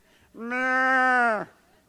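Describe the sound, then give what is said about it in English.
A single long, drawn-out moo from a mother cow separated from her calf, loud, holding a steady tone for about a second before dropping off at the end, with no other sounds around it. “Two mama cows separated from their calves, mooed all the way there.”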